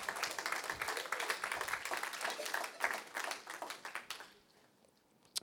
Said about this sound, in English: Yes, you can clap. That's good.